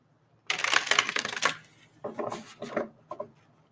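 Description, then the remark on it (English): A deck of cards is riffle-shuffled: a dense, crackling flutter for about a second, then a few shorter rustling bursts as the cards are gathered and squared, with no talking. “Let me shuffle this two more times.”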